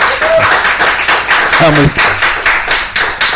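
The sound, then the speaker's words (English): A round of applause for a guest on a show: dense, steady clapping from a group fills the whole stretch, bright and loud, with a few brief tonal bits and faint voices mixed in. “so you can give him a round of applause.”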